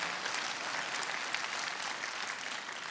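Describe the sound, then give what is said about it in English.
A crowd claps steadily for the full three seconds, a dense, even patter of many hands with no breaks and no one speaking over it. “See, understand, hey, if you're going to clap, just go all out. No half clapping.”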